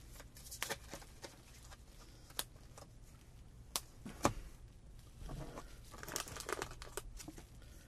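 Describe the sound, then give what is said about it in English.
Papery rustling and riffling as an entire deck of cards is shuffled during a board game, with several sharp snaps and crisp bursts over a steady low background hum; no one speaks. “And then the entire deck gets shuffled.”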